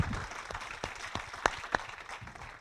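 Audience applause, a steady dense patter of many hands clapping at moderate volume, with a few sharper, louder claps standing out partway through before it begins to thin.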